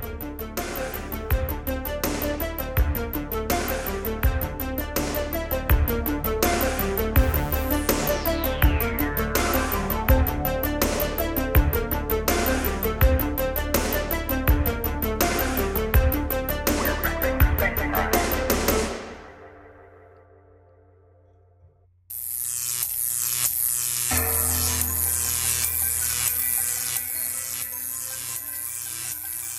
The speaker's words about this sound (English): that music, of course, means that it is time for The Buzz